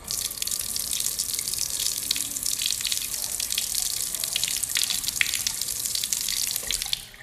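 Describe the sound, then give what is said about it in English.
Hands being washed at a sink with Bath & Body Works gentle foaming soap under a running tap: a steady rush of water with slight splashing variations, continuing for about seven seconds before cutting off. No one speaks. “So what I use for washing my hands is a Bath & Body Works gentle, foaming soap.”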